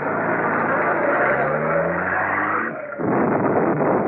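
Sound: getaway car speeding off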